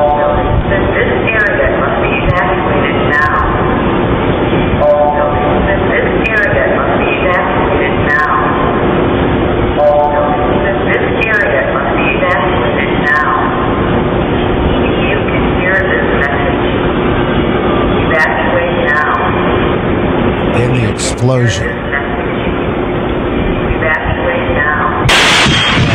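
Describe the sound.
Muffled, continuous voice and noise on closed circuit security camera footage in downtown Nashville on Christmas morning, then a sudden sharp blast from an explosion out of an RV bursts out at the very end, cut off almost as soon as it hits as the footage goes static.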